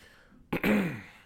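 A single throat clear before reading aloud: a short burst followed by a raspy, resonant rumble that tapers off within half a second, with no speech around it.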